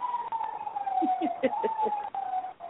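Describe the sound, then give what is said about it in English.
A police siren wails steadily in the background, its pitch sliding gradually lower as it passes, with a few short, soft cooing pulses briefly overlapping it midway. “Damn police in the background.”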